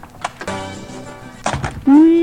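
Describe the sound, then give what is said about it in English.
A door is opened for an arriving visitor, Frank Fontaine, on the Sounds Like Radio Show, with a few sharp clunks and knocks, ending in a loud, drawn-out creak that slides upward in pitch, with voices and harmonic sound running underneath. “He's coming up the steps. He's arrived. Open the door.”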